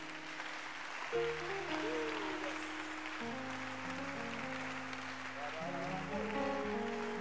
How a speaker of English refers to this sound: Keep clapping. And as you are clapping, ask your friend, by the way, what are you hiding? What are you hiding? Keep clapping and ask somebody. As you are clapping, ask somebody, what are you hiding?